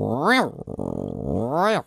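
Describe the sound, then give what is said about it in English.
A voice imitates a Geiger counter: a swooping vocal whine, then a rough, rattling buzz of rapid pulses, ending with another rising-and-falling whine. Loud and alone, under two seconds. “If it was an actual radioactive site, it would have gone...”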